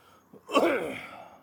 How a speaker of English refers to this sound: You all right? Yeah, I got a cough. Just been eating too much Martian food.